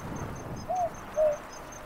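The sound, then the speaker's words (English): Two soft, low hoots from an owl, a boobook, spaced about half a second apart over a steady night-time background with faint, regular insect-like ticks above. “That's a boobook. It's a type of owl, not a night parrot.”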